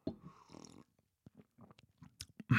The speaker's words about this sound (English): Darjeeling Summer Gold Indian Tea Black. It's Indian Black Tea, Summer Tea. It's delicious. Wow. The flavors, the subtleties. I'm going to take a sip for you now and hope you can hear how amazing this tea tastes.